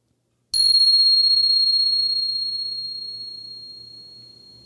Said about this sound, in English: Here comes the bell.